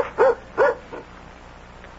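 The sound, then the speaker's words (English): A dog barks two sharp, loud times in quick succession, then gives a softer third bark before falling quiet; no one speaks. “Monica, the dog's telling us something.”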